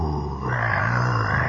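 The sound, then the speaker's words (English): A voice imitates the roar of huge fire flames: a loud, steady, throaty rumble with a breathy rush on top, sustained for about a second and a half without pause. “This fantastic flame, that roaring, that enormous thing.”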